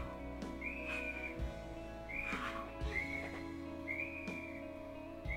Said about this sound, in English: Because if anybody who's ever blown a whistle knows, you have to really put your breath into a whistle to blow it.